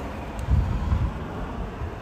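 A palm tree's branches rustle and scrape against a light pole and the Cat and Cloud sign in a breeze at night, a steady, hissing wash of noise with low, buffeting wind gusts that swell briefly near the start. No one speaks.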